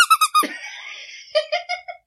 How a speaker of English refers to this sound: we do have buzzers, which are, Karen and Bean's squeaky toys